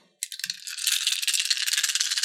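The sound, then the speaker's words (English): A handful of eight dice rattles and clatters in a dense, steady stream of bright little clicks, starting abruptly and continuing for about two seconds with no voices; the dice are rolled for fireball damage. “Let's roll this damage up, baby.”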